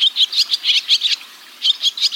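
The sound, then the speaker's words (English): Rapid, high-pitched twittering bird calls in quick bursts, a brief pause, then more chattering notes, consistent with barn swallows calling, with no voices present. “Or that our backyard barn swallows of summer retreat in winter as far as southern South America.”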